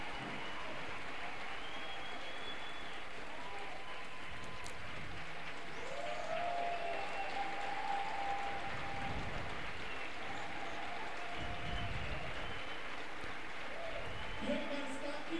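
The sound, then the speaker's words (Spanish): An audience claps and cheers in worship of God in a steady, dense wash of applause lasting throughout, with scattered voices calling out over the noise. “Dale la atención y el aplauso y la adoración que merece ahora.”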